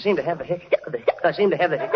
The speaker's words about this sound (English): I seem to have the hiccup. How did you know? Well, you had me fooled. I thought you swallowed a cap pistol.